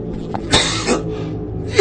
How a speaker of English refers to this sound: Excuse me. Oh, I tell you what, this cough is shows up at the worst times.